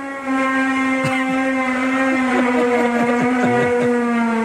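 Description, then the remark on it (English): A loud, eerie horn drones without a break, one of the unexplained horn sounds heard seemingly coming from the sky, a deep steady blare rich in buzzing overtones, with faint wavering, whale-like tones sliding over it. No one speaks. “super weird and crazy loud horn sounds have been heard. And it's like they're coming from the sky”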